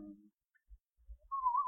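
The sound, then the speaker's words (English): A short, clear whistle rises and wavers slightly, lasting under half a second at the end, after a brief low murmur and a few soft thumps. “I was going to whistle.”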